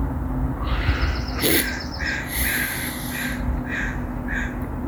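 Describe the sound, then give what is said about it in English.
Birds call repeatedly in a backyard, harsh, cawing bursts coming in quick irregular clusters over a steady low rumble of background ambience, clear, with no one talking. “Thanks for hanging out in my backyard with me. There's birds. Damn birds.”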